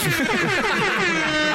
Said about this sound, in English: Don't quite know how to break it to you, but it's a double air horn. And another.